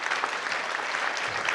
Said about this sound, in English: Right, thank you. Maybe we should give all of them a round of applause.